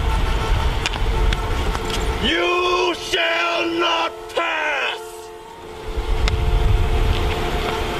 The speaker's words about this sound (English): But all these cars are behind him honking like, go, move it. And he's just on the skateboard saying that.